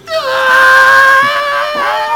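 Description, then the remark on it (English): A person lets out a long, sustained imitation scream, loud and steady with a high harmonic tone, holding for a couple of seconds with slight wavering and no other sound. “He just screaming.”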